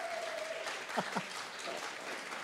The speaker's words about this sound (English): And let's cheer and clap. Awesome. Come on. Come on. Thank you, Lord. Thank you, Father.